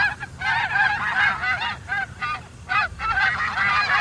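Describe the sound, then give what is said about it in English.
Geese honking repeatedly in quick, overlapping bursts, a loud and continuous chorus of nasal honks lasting several seconds with no talking. “It's just a goose honk.”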